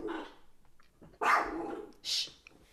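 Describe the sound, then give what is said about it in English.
A dog named Ziggy barks at nothing three times in quick, uneven succession, with the middle bark the loudest and a sharper, higher yap at the end. “This dog is gonna be my 13th reason. You're barking at nothing, quite literally.”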